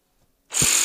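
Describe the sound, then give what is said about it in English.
A saw abruptly starts up after a moment of near silence, a loud, high-pitched mechanical whine with a brief low thump as it kicks in, running steadily to the end. “They were sawing a lady in half with a saw like this.”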